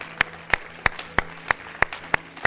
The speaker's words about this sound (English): Hallelujah. Clap your hands one more time to the Lord today.